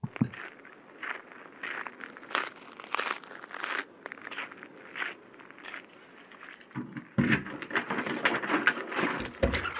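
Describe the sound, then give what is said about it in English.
Keys jingle and clatter in irregular bursts, mixed with crunchy rustling and shuffling, growing busier and louder near the end with no one speaking. “So if you can grab your keys, mate, and we'll just make sure there's no Germans lurking in there.”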